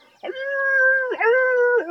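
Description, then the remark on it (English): A loud, wolf-like howl from a whole host of halflings, sustained and eerie, rising and dipping in pitch across three drawn-out swells with brief breaks between them, and no talking over it. “A blood-curdling wolf-like.”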